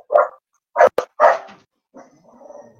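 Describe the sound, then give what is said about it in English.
A dog phoning in to a call barks three times in quick bursts over the phone line, the sound thin and compressed, followed by a few softer whimpering whines trailing off. “Oh, we've got a dog phoning in.”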